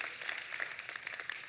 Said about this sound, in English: If two people clap, we all clap. Come on. Yeah.